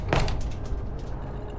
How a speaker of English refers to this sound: Tim dashed across his room and opened his bedroom door.